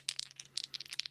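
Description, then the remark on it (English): Two ten-sided dice rattle and tumble across a hard surface in a quick burst of bright, clicking taps, settling after about a second. No voices. “I'm just 2 10-sided dice.”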